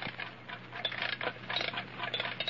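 An old alarm clock is wound, giving off a steady run of quick, dry ratcheting clicks at moderate volume, with a few sharper knocks as it is handled and set down on a lead table in the center of a magnetic field. No one speaks.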